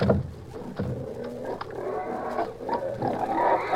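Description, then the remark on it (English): Several pigs grunt and snort steadily while they eat slop, their low, overlapping calls broken by short, sharp squeals and messy feeding noises, with no one speaking. “Pour out the slop for those pigs.”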